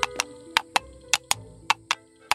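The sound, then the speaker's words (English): Coconut shells clopped together to mimic horse hoofbeats: about nine sharp, hollow knocks in an uneven clip-clop rhythm, fairly loud and crisp, with no voices. “It's just me playing with my coconuts.”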